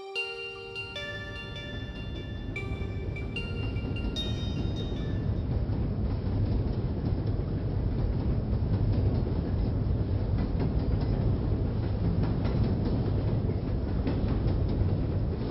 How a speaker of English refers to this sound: The motion of the train rocked me awake as we passed by a silvery lake